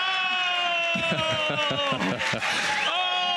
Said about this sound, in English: Oh, look at the crowd goes crazy.